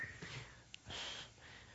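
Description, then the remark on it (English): A short, muffled cough bursts out, preceded by a quick sharp intake of breath, then trails off into soft breathing. It's quiet, with no talking. “I injured myself a little here, so when I cough, it hurts a little bit more.”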